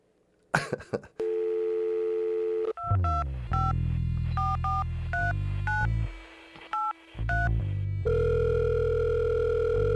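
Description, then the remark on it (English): A phone number is dialed on a touch-tone keypad: a steady dial tone, then about ten quick beeping key tones in an uneven run, ending in another sustained tone. Clear, with no voices. “Pick up the phone, Rockford.”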